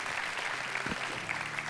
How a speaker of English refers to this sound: Can we just give our home church pastors a round of applause for all that they do?